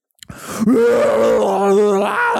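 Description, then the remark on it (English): A single loud, drawn-out scream from one voice, harsh and groaning in tone, holding steady for about two seconds with a slight waver in pitch, after a brief breathy start. “As you hear the orcs all kind of start chanting, you see them all kind of like, can we get that scream?”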